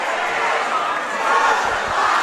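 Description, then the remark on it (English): A basketball crowd at a La Follette Lancers game cheers loudly and continuously after a made free throw in overtime, a dense roar of many voices with scattered shouts rising above it, sustained at high volume for the whole stretch. “This crowd is going nuts.”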